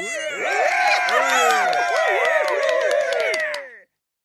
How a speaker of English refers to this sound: Round of applause for Sarah.